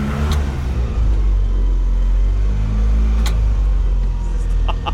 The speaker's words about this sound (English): Stop revving it, dude. I can't help it.